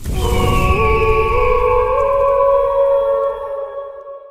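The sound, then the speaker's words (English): A mournful phoenix song blended with a long wolf howl for Lupin and Tonks: sustained, wavering tones that slide upward in pitch over a low rumble, holding steady before fading out near the end. “Phoenix Song and a wolf cry for our dear friends tragically killed just as their son Teddy was born.”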